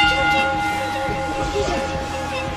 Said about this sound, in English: Ring the bell.